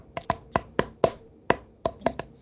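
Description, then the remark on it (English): Drink bottles, a Mickey's Fine Malt Liquor and a Gatorade, clink together in a toast about a dozen times in quick, uneven succession, each tap sharp with a short mid-pitched ring. No one speaks during the clinking. “have your Gatorade or whatever, so let's I have clink my it real fast.”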